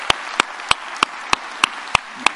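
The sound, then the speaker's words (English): An audience claps in appreciation of mothers in a steady, even rhythm, about eight sharp claps in just over two seconds, crisp and moderately loud over a faint hiss, with no talking. “Let's give our mothers a hand clap of appreciation today.”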